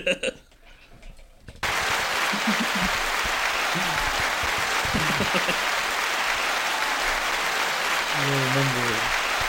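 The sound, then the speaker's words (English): A burst of loud, dense applause from a crowd starts abruptly after a brief moment of talk and continues steadily, with a few voices calling out over the clapping. “I'm sorry, I just applauded over everything you said.”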